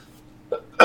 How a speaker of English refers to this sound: I'm half sick, guys. Apologize for the coughing throughout the episode.